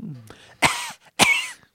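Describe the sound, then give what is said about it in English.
Two short, dry coughs, fairly loud, each a harsh, raspy burst separated by a brief pause, with faint breathy sounds before them. “You hitting with a dry cough near me, I'm out.”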